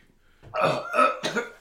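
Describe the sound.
A voice imitates a rough cough, three quick, hacking bursts in close succession, fairly loud, with no other sounds around it.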